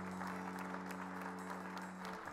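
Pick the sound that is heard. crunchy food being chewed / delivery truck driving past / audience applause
audience applause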